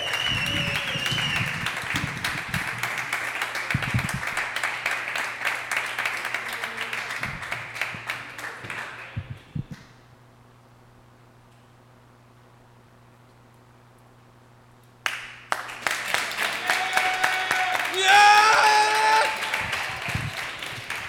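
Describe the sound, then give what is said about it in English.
A large audience claps in a dense, steady burst for several seconds for the evening's headliner, Mr. Roddy Ray, then falls silent except for a low hum, before loud applause surges back with some cheering mixed in. “hey, let's start clapping right now for your headliner of the evening.”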